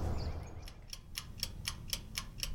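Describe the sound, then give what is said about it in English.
A woodpecker knocking on wood: about eight sharp, dry taps at a steady, unhurried pace, growing more distinct as they go, over a low rumbling background with no talking. “Woodpecker. He agrees.”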